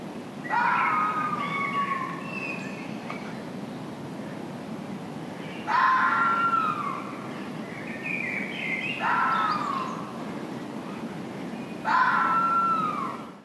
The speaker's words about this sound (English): You could be forgiven for thinking someone was in serious trouble, but this is actually a fox barking. Their eerie call can really give you a fright when you're not expecting it.